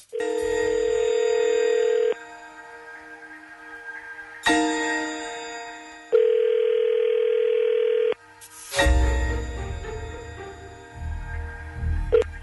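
A phone call is placed to a man. A steady telephone dial tone hums, then electronic ringing tones sound in spaced bursts with pauses between, ending in muffled clattering noise as if a handset is picked up. No one speaks.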